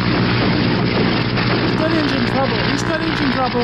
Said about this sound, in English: Here comes Commander Buzz Corey. He's flying a biplane.